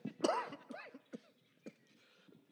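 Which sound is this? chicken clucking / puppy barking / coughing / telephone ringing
coughing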